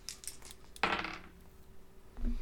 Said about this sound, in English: So it's time to roll up luck. Everyone, do roll your percentile dice. Sorry. And try to get above your luck score.